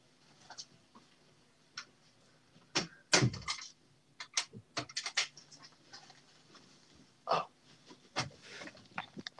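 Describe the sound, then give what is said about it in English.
A door being opened, heard as a scatter of clicks, knocks and handle rattles, with a couple of heavier thumps, with no one talking. “Just have to open the door for those Jaffa Cakes.”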